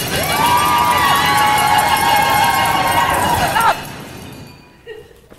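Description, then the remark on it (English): An audience, told to make as much noise as they can on the count of three as a rehearsal, shouts and cheers all at once in a loud, dense roar with some high whoops on top, holding steady for several seconds before breaking off and fading out. “Let's see how much noise you can make, okay? On the count of three, everybody do it.”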